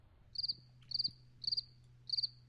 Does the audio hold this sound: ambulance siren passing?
no